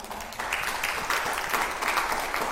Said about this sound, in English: I think that's something that deserves an applause.